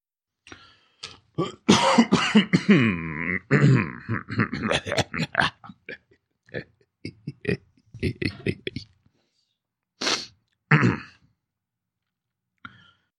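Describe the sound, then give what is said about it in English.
A person clears their throat, loud and gravelly, with a long rasping stretch followed by shorter guttural bursts and a couple of sharp hacks after a pause. “Let me clear my throat.”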